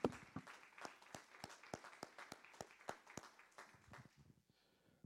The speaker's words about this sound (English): Give them a hand clap of appreciation.